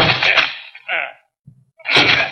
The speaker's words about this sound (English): Come on, let's break down the door. Yeah.